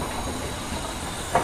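A train rumbles steadily along railway tracks, a continuous low roar with a faint hiss, and a brief metallic wheel squeal rises near the end.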